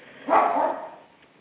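A dog named Maverick barks once during a radio show, a short sharp bark that fades into quiet, sounding thin, as if picked up over a phone line. No one speaks.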